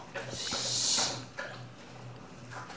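A dog eats her food and drinks her water: a few scattered crunchy clicks and a burst of wet, hissy slurping and snuffling, over a low steady hum.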